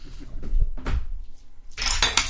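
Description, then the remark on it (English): A handful of five dice rolled for an observation check in a tabletop game, rattling and clattering across a hard surface, with a few scattered knocks followed by a louder, bright burst of clicking toward the end, no voices. “I will observe with my 5 dice.”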